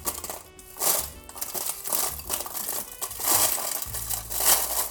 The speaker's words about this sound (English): Now, I didn't intend to do this, but I ended up getting kettle chips. So they're just gonna be a little crunchier. And how you measure these is crush up your potato chips and then measure out 1.5 cups.